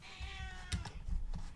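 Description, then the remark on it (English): A single drawn-out cat meow, fairly soft, followed by a few brief thumps or clicks as it trails off. No one speaks. “The cat is trying to eat me, so I'm going to go back to the show.”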